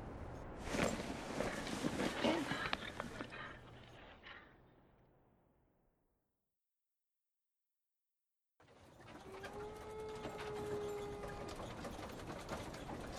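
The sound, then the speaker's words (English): A single long wolf howl rises faintly from miles away over steady outdoor ambience, following an earlier stretch of rustling noise and a brief moment of silence. “Papa, did you hear that? Was it a wolf? Yes, son, but don't fret. The sounds be miles away.”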